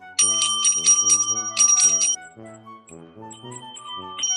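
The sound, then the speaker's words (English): A bicycle bell rings rapidly in repeated bursts of bright metallic trills, loud at first, then continues more softly with quieter rings toward the end. “Well, that bell can only mean one thing.”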